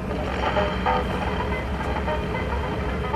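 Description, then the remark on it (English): A steady, dense mechanical whir from a newly installed air conditioner blowing cold air into a room runs without pause, with faint phonograph music barely surfacing through the constant rumble. “So I've got two machines going. The new air conditioner and the phonograph.”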